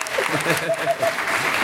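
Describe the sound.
A round of applause, a dense, steady patter of many hands clapping at an even loudness for under two seconds, with a voice talking over it.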